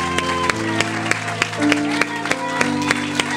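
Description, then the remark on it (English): An audience claps together in a steady, even rhythm, the sharp hand claps landing over sustained, droning keyboard chords. “Come on, just keep that clap going for a little bit.”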